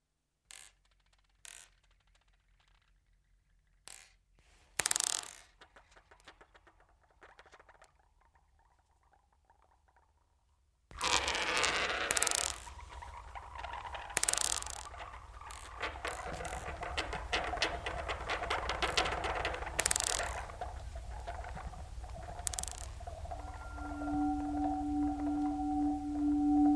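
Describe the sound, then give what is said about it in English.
Glass beads of different sizes shaken in a scientific glass beaker, played live, starting with sparse, sharp clinks and taps, then bursting into a dense, continuous rattle with faint ringing tones underneath. “So I'd bought loads of different sized glass beads, and I brought up this beaker, this scientific beaker, which was the main thing I played live”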